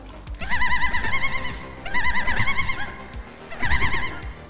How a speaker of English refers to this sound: And then this bird makes another wavering call.